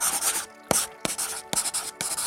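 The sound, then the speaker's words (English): A pen scratches across paper in several quick bursts of strokes as papers are signed, separated by short pauses and sharp taps, with a bright, hissy texture and no voices. “Gentlemen, I need you to sign these papers stating that you are both alive.”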